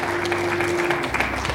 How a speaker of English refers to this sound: Clap our hands one more time for Jesus. Hallelujah.